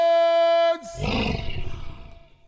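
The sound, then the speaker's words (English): A held musical note ends the Lions team fight song and cuts off. Then a loud, rough lion growl rumbles for about two seconds, gravelly and low, fading slightly toward the end. “No, the growl. The growl at the end was good.”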